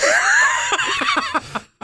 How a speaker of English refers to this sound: He's coughing. He's dying. He's dying over here.